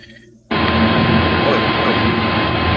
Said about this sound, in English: Oh, there's the vacuum. Where? Just heard it. It's gone.